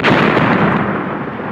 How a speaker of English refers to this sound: We want something explosive, but positively explosive. Right? We want explosions with that one.